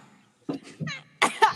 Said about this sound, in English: Oh, we got a cough.